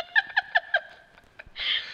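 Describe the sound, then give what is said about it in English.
A bird call of four quick, evenly spaced chirping notes, clear, followed by a short burst of airy, hissing noise. No one speaks. “I'm going to follow that bird. Maybe it will roost somewhere with water.”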